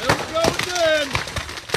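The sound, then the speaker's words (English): Ammunition cooking off in a house fire in Coco, Brevard County, that started when a camper in the backyard caught fire: a rapid, irregular string of sharp firecracker-like pops and cracks, with voices and a faint tonal whine mixed underneath. “Video taken by a neighbor in Coco captures what sounds like fireworks exploding inside.”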